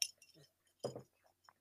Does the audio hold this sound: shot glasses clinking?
yes